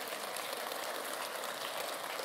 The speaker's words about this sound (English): Give them another round of applause real quick.